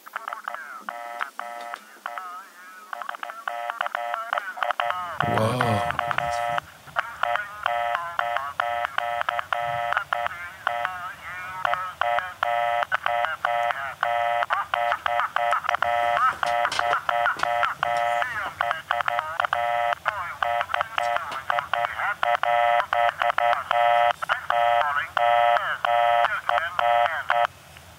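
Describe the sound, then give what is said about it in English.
Morse code beeps: a loud, continuous stream of rapid, high-pitched electronic tones chirping and warbling with little pause, briefly interrupted early on by a sweeping burst. “If anybody can read, what's that called? Morse code.”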